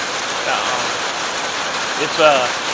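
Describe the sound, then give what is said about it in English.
Steady summer rain falls on a very hot midsummer day in a dense, even hiss throughout, moderately loud, with a brief voice surfacing faintly under the downpour near the end. “I'm not even sure if you can hear me through the rain.”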